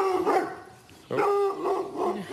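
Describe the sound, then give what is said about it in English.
A sheepdog barks in a sheep paddock on a family farm where dogs are trained: an opening burst, a brief pause, then a longer run of loud, high-pitched, yelping barks with no voices present. “Now we're off to a special spot on the Crystals farm where generations of the family have trained their dogs.”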